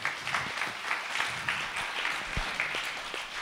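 An audience bursts into a sustained round of applause, dense overlapping claps forming a steady bright crackle that holds at an even level throughout, with no one speaking over it.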